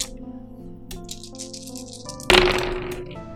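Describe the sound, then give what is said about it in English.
Dice are rolled for a dexterity check, rattling and then tumbling loudly across a hard tabletop, a sharp clatter that fades as they settle. Soft steady music plays underneath. “What was I rolling for?”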